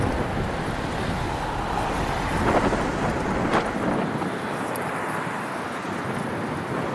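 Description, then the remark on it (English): Continuous low roar of cars rolling along a street that is not yet blocked off, with one passing vehicle swelling louder midway before the rumble eases and thins toward the end. No one speaks. “apparently the streets are not blocked off yet, because as you can hear, we've got some cars that we're hanging out with.”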